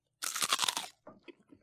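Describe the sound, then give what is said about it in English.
A loud, crunchy bite into crisp pizza crust, a dense burst of crackling followed by a few softer chewing crunches, with no talking. “Wow. Very crunchy, very crispy.”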